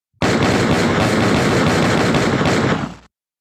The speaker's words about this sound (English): Drew Lock, gunshots for Drew Lock.